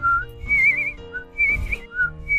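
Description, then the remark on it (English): A short whistled happy song of bright, wavering notes in a few quick phrases, with the pitch stepping up and down. No one speaks. “But she kept on flitting about, doing her best to sing a happy song.”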